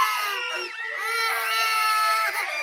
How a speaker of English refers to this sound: But I don't think there's anything that makes you want to have sex less than being surrounded by a bunch of screaming, crying children all day.